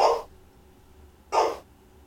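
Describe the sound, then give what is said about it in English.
A dog barks twice at the door as someone comes home, about a second apart: two short, sharp barks with quiet in between and no voices. “The dog barks when people come to the door.”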